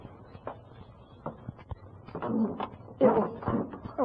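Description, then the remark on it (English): A few soft footsteps climb stairs, then a stair board gives a couple of squeaky, groaning creaks as weight shifts onto it, louder than the steps before. “Oh, it's that creaky step.”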